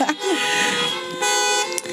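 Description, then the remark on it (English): Several car horns honk together in a loud, overlapping chorus, sustained blasts blending into one another with a brief dip before sounding again, as people honk in applause to thank the pastors who run a church program. “If you can honk your horn and let them know how much we appreciate it.”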